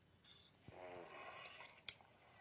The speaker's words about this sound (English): So that's his weird little creepy breathing noise.